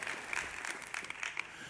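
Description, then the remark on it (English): A church audience applauds its best year of giving ever with dense, steady clapping, a rapid crackle of many hands with no pauses, fairly loud and sustained through the whole moment. “And that is something to clap about.”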